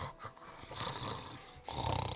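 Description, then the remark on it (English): A dog snores in its sleep, with rough, rasping breaths that rise and fall in a steady rhythm, the last breath louder and fuller. No one speaks. “That's all you hear from Franklin as he's snoring away.”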